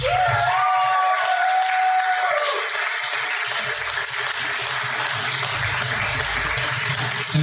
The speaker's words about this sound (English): But look, you've got to put your biggest hands together for the lady who actually is the only reason why this event actually came off. Okay, she has worked tirelessly in the background, in the foreground, everywhere.